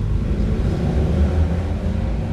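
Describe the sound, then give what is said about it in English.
Loud, steady outdoor traffic rumble with deep engine drone from passing motorcycles and trucks, continuous throughout, with no voices. “Between the trucks and the motorcycles and all that.”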